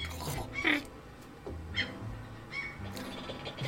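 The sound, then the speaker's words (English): A cat chatters its teeth, letting out a few quick, clicky chirping bursts spaced apart over a low, steady background rumble. “Like chattering its teeth.”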